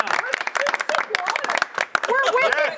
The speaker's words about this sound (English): Please clap.